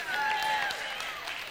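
An audience claps in a steady, dense patter that holds for the whole moment, with a thin, high ringing tone hovering over the first half.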